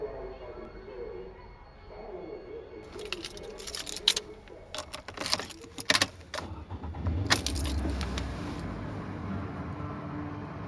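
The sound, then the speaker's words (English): Keys jingle and clatter in several sharp bursts over a low steady rumble like the inside of a car, as someone gets into the car and settles into the seat. “The moment I get in the car, I start commenting on what I remember, like automatically, like on cue.”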